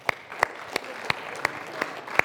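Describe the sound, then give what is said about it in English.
Light, sparse applause from people at a worship service: about seven sharp handclaps stand out at uneven intervals over a soft background hiss, with no voices. “Let's give them a clap.”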